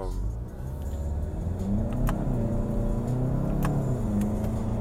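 A Mustang car engine accelerates, a loud, continuous throaty rumble whose pitch climbs and surges through the whole stretch, with sharp clicks and ticks popping up above the roar.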